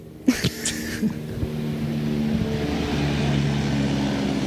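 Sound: airplane passing overhead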